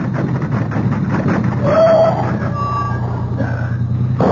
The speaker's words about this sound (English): There's a little spot over there. I can drive the car off the road. But it'll be rough going for a moment, too. Hope no one comes around the bend as we cross. Here goes.